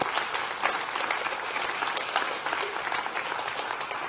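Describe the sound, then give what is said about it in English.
Sustained applause from a large group, given as a clap offering to God, a dense, steady wash of many hands clapping at once for several seconds with no pauses and no voices standing out. “And right now, I want to respond to God with a clap offering about what He is about to do.”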